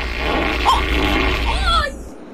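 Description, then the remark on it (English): A long, drawn-out real fart lasting about two seconds, with a rough, sputtering texture and a few squeaky wavering tones toward the end, loud before cutting off. “…, that's …, a real fart.”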